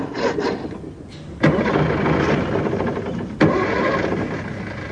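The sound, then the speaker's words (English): An old second-hand car engine cranks and sputters as it struggles to start, with two sharp bursts where it nearly catches, fairly loud with no one talking. “It all starts when you decide to junk your second-hand bike and buy a second-hand car.”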